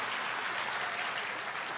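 A crowd at Kirby Church claps steadily, a dense, even wash of many hands with no gaps or pauses, sustained at a fairly loud level with no voices standing out.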